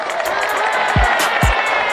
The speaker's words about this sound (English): Let's give him a round of applause one more time.